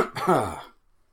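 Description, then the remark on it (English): One short cough with a rough, throaty rasp, almost like clearing the throat, quickly fading to silence. “When you cough.”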